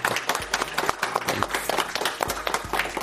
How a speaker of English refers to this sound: Let's give a great round of applause for Dr. Flatt.